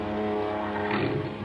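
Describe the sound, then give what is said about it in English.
A car engine rumbles low and steady as the vehicle crawls slowly down a driveway into rain and darkness, its hum swelling slightly midway before settling again, with no voices. “I watched a car crawl down the driveway into the rain and the darkness.”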